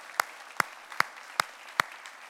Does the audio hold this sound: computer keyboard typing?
no